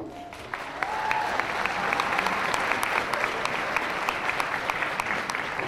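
An audience at the SensiCon 2012 Masquerade applauds all the participants and judges, a dense wash of many hands that swells after the first second and holds at an even, moderately loud level, with faint crowd murmur underneath.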